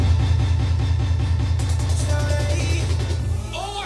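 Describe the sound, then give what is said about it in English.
Opening of a comedy rap song: a deep, booming bass pattern pulses in a steady rhythm, joined partway through by brighter synth tones and rising chimes, with no vocals yet. “So the song that I have chosen is actually a little bit of a feature verse”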